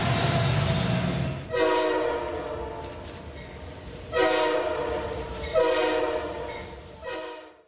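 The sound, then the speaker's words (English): A train horn sounds in three loud, sustained blasts with rich harmonic tones over the low rumble of a rolling train, prominent, fading out at the end. “All aboard. All aboard the Taysom train.”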